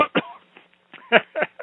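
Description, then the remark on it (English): A scattering of people cough in short, overlapping bursts, several coughs in quick succession with brief pauses between them, moderately loud, with no speech; the audience is told to cough two times during a deliverance prayer in Jesus' name. “Everybody cough two times.”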